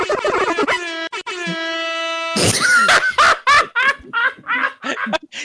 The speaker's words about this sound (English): They all three buzzed at the exact same time.